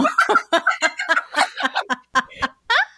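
A pet hen that lives in a house clucks while being held, in a quick, uneven run of short, throaty bursts, finishing with a slightly longer, higher squawk. No one is talking.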